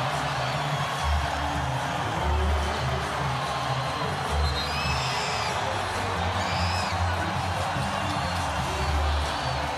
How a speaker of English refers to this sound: The crowd getting into it here for really, they've been excited, but they really got excited with that one.